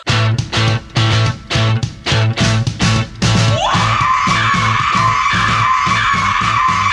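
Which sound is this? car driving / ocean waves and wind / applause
car driving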